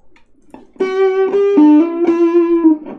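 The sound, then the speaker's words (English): Loud, buzzy notes played through a distortion effect: a short phrase of a few sustained, gritty tones that shift in pitch, with no talking over them. “So this is a distortion. I like this a lot.”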